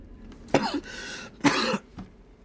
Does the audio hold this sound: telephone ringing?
no